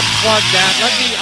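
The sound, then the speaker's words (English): A loud, buzzing chainsaw sound effect from a small device connected to a computer, with a harsh, hissy engine roar whose pitch wavers slightly, running steadily through the whole short burst. “Okay, so that little one has the chainsaw for my computer.”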